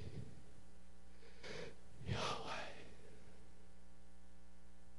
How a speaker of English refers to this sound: When God told us what his name was. Yahweh. And some rabbis think it was Yahweh because that's the sound you make when you breathe. Yahweh.